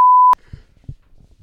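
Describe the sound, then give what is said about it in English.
A loud, steady censorship bleep tone sounds for about a third of a second and cuts off abruptly, followed by faint, muffled low thumps and near silence. “He's got to beep it like five Jesus times.”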